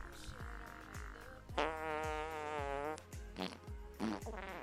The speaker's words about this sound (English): And now, ladies and gentlemen, 10 minutes of fart sounds